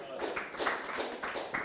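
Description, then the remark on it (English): A crowd claps together in a steady, dense patter, the sound rising and falling in quick waves. It fills the room at moderate volume, with no distinct voices standing out. “Yeah, you can clap. Go and clap.”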